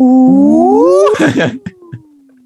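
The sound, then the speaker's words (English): A person imitates a whale, with a loud, drawn-out moaning tone that slides upward, breaks into a rough, crackling burst, then trails off in a faint, low descending hum. “And we're going to make some whale sounds.”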